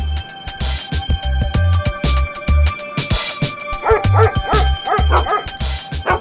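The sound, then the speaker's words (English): A dog barks repeatedly in quick, uneven bursts, loud, with higher-pitched yips and whiny barks creeping in toward the end over a faint steady hum. “I was in charge of retraining the dogs.”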